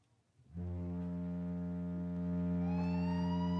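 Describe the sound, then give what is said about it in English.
The Ducks' hockey goal siren, played from an app, kicks in abruptly after a brief quiet moment and blares loud and steady, a deep buzzing drone joined near the end by a rising, whining upper tone. “No, that's the Ducks. Oh, really? They have a siren?”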